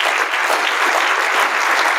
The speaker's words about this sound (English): I was one of the people that was applauding Senator Kinski